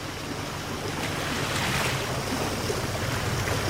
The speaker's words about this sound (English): I have never seen ocean water bubble and swirl and twist about so much. It's like we're in a cauldron. This is the Old Sow. It's a spot off Deer Island, New Brunswick, that's crazy with whirlpools.